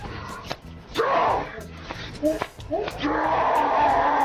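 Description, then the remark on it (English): A voice imitates the scream of a monster from the computer game Doom, heard when opening doors: strained, raspy vocal shrieks that rise and swell, with a short break partway through, then a long sustained growling howl to the end. “When you played, there used to be a computer game called Doom, and you would play it and you'd open the doors and a monster would scream like this.”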